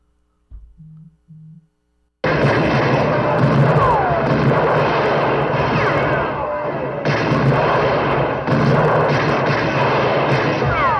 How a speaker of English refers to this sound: Am I guessing the gunshots or the pew sound? The gunshot.